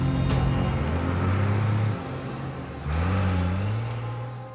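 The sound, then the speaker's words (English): A getaway truck's engine rumbles loudly, revving and shifting pitch as it accelerates away leaving Rome, with a steady low drone throughout and no voices. “Instead, he was arrested and his getaway truck left Rome without him.”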